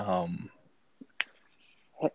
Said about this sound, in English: I hear you typing, yeah. I'm trying to search up the name of that.